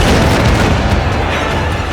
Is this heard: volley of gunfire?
yes